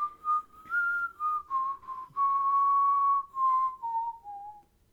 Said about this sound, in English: I spent that entire time trying to figure out you were whistling and I didn't recognize it.